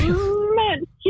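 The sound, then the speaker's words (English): A person imitates a cat's sneeze with a single high, squeaky, drawn-out vocal sound that wavers and dips in pitch before cutting off, followed by a brief breathy trailing noise. “give me an impression of how your cat sneezes.”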